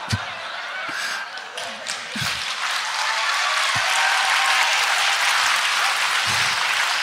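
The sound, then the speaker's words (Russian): An audience claps steadily, a dense wash of many hands that swells and holds at a loud, even level for several seconds, with no clear voices over it. “Сижу, хлопаю и против себя как-то хлопаю.”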